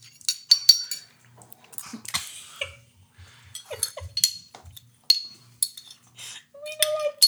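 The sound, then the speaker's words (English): Repeated bright clinks of cups and utensils knocking together, irregular, with a few sharper rings near the end and faint low murmurs in between. “We're just clinking.”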